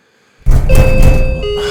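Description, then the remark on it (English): Heavy thumping on a door starts abruptly and keeps going in a loud, dense clatter, while a steady electronic doorbell tone rings over it and shifts pitch near the end. “Now who's at that door? And the doorbell? And the pounding?”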